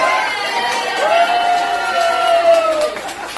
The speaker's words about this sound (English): See, they're finally cheering for me picking on Greg. I knew it would, eventually I would win them over.